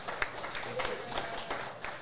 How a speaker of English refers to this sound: Here's to an Eels victory, ladies and gentlemen. A round of applause for a Parramatta legend, John Muggleton.